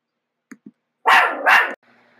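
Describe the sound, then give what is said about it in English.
A dog named Butters lets out two loud barks in quick succession, preceded by a couple of soft, short huffs, with no one talking. “And my dog Butters agrees.”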